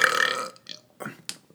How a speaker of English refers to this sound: Like, I need to just taste it all when I burp. I have yet to have a good burp like that, but I'm not looking forward to it.